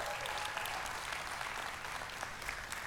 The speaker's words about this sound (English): Since you weren't there, let's celebrate with this family, and let's celebrate with them and just give them a round of applause for being baptized last weekend.